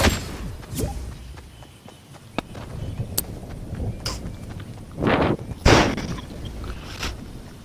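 Scattered video game gunshots crack out at irregular intervals, with several sharp bursts, the loudest clustered in the second half, over a busy low rumble of game background noise.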